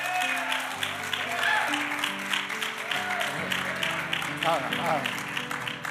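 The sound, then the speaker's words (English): A church audience claps steadily and loudly for several seconds after being asked if they are proud of their church, with scattered shouts and cheers mixed in and sustained organ-like tones playing underneath. “Now, if you didn't clap that time, you're just being mean, and I'm going to pray for you.”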